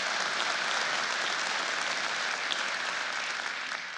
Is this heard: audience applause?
yes